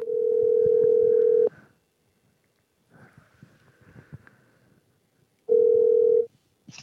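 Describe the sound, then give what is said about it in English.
Telephone ringing on the line: two long, steady ring tones separated by a pause filled with faint clicks and rustling, as if a call is being placed. No one speaks. “Let's get Margaret on the phone.”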